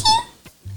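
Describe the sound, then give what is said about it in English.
A female dog wanting to be let in lets out a short, high-pitched whine that fades quickly, followed by a faint brief yelp, with a low steady hum underneath. “The dog's crying.”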